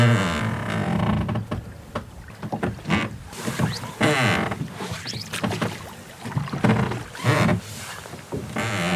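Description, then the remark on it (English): Oars of a rowing boat heading down a loch creak and groan in a steady rowing rhythm, each stroke bringing a squeaky wooden creak and a splash of water, repeating about once a second over a wind-brushed background, with a willow warbler singing. “And to the sound of a willow warbler. And the creak of the oars.”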